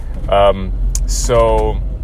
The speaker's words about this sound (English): If you hear my car, I apologize.